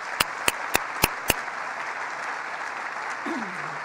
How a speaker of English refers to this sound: So please, let's give a round of applause for them.